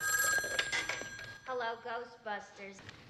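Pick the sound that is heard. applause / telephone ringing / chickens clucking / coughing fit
telephone ringing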